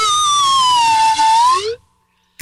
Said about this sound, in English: John's not getting any better with the slide whistle.